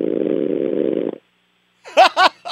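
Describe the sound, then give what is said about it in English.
A loud, raspy, fart-like buzz drones steadily for about a second and stops, followed after a short silence by two brief, bright voiced bursts. “Is that a fart or is yeah, he, it sounds like a fart.”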